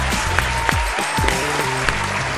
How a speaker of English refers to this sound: Fans at the stadium were heard cheering and applauding that decision. It was beautiful.